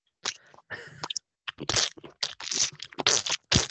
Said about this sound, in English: You sound like you're eating the tablet. I'm eating my fucking scone. I told you that.